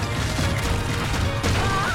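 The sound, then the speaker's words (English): Heavy stone headstones are knocked down one after another like dominoes in a dense, rumbling chain of crashes. The sound is loud, with one sharper smash near the end and no talking. “A bunch of headstones get knocked down domino style, and one of them nearly smashes his dick, which is hilarious, of course.”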